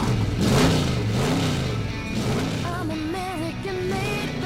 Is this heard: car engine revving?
yes